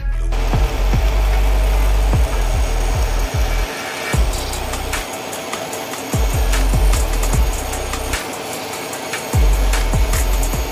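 A saw cuts steadily through wood along a marked line, a loud, continuous buzzing roar, punctuated by repeated low knocks and rasping catches as the blade works along the cut; no one speaks.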